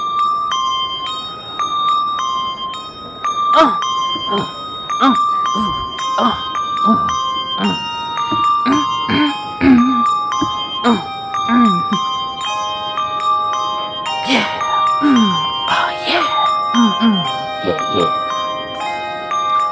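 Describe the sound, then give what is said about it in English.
Many small bells jingle and ring together for the whole stretch, shaken in a lively rhythm during a dance with 36 bells, fairly loud, with sliding vocal sounds mixed in underneath. “This is called the Dance of the 36 Bells.”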